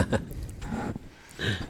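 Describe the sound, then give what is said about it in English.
Someone chews an apple, with three moist, crunchy bursts of chewing spaced across a short, quiet moment and no talking. “I can hear you chewing your apple.”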